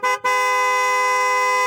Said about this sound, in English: Oh, geez, my neighbor was honking his horn.